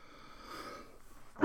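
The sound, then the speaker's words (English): A faint, wheezy, whistling breath lingers for a moment, then a single sudden, loud cough bursts out right at the end, cut off almost as soon as it starts. “There's that cough again.”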